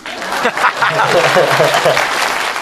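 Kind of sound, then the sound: crowd, clapping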